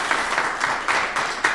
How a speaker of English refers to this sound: We will now ask our small live audience for a round of applause for these candidates for bearing with us. Thank you.